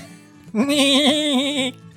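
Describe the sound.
A single drawn-out, wavering bleat voiced by a person imitating a goat, loud, lasting about a second with a shaky quaver before cutting off.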